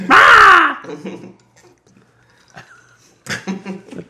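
A single loud, harsh raven caw rings out at the start, then fades into quieter background sounds and faint voices talking.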